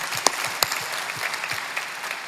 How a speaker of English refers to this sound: That's awesome. That's a great place to clap.